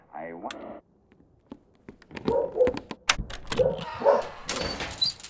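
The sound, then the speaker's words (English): A dog on a dairy farm gives a whiny yelp, then after a few scattered knocks breaks into a string of sharp barks mixed with clattering and bumping noises. “dairy farmer Bill Arnold is just getting ready for bed after a grueling 16-hour day of baling hay when his dog starts barking”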